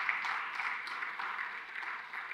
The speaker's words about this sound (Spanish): Dale ese aplauso fuerte al Señor.